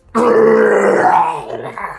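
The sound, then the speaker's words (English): During a game, a person voices a creature's defiant roar as black lightning crackles over its body: one loud, guttural growl that bursts in abruptly, holds for nearly two seconds with a rough, low throaty tone, then tapers off. “As it roars in defiance at you.”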